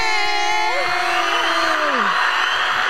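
A crowd cheers in a steady, loud roar welcoming a guest into the building, with several high, sliding whoops and yells rising and falling above the noise.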